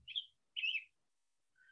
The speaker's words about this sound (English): I'll have to turn off my little bird a little later. We're setting the spring tone.